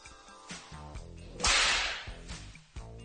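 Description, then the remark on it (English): A single sharp, loud whip crack snaps out midway, its bright burst trailing off over about half a second, with steady background music playing underneath throughout. “Me and my whip, for versus the four of you.”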